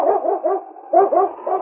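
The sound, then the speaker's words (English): Yukon King, a husky lead dog, barks in quick, loud bursts, about six sharp barks in two rapid clusters with a short pause between, with no talking. “It's Yukon King, swiftest and strongest lead dog of the Northwest, blazing the trail for Sergeant Preston of the Northwest Mounted Police in his relentless pursuit of lawbreakers.”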